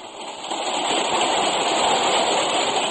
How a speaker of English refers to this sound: Chug, chug went the train. We were Florida bound.